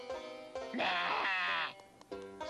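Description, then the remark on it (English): A cow lets out a strange, strained call that sounds more like a bleat or groan than a moo, loud, lasting about a second, with shorter vocal noises before and after. “Farmer got rid of the cow because she didn't sound like a cow.”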